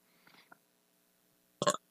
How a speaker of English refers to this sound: Okay, I had to burp there, I'm sorry.